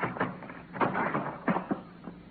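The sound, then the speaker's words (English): A door off a hallway, with gas fumes coming from under it, is forced open with a shoulder: several heavy, dull thumps and a splintering crash, fairly loud, with no voices. “It was coming out from under her door. I had to use my shoulder.”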